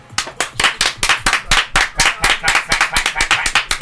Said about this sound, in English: That wasn't me clapping.